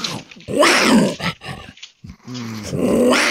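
Harsh, raspy growls and snarls from a group of five mountain lions, some of them young and small, on a played video, several bursts overlapping in a rough, noisy tangle, loud, with one deeper rumbling growl near the end.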